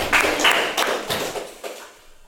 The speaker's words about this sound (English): I'm going to get their chairs. I'm going to scoot them.